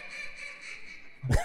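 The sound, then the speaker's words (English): A person imitates a mallard hen's call responding to a drake: a steady run of nasal, reedy quacks followed by a sudden louder, harsher burst at the end, heard alone. “That was the hen responding to the drake.”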